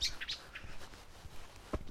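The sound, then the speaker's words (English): Birds chirp in the aviary in Jurassic Park, with several quick, high-pitched tweets early on and a few scattered calls afterward over a soft, rustling background. Fairly quiet overall, with no voices. “I'm in the aviary in Jurassic Park here.”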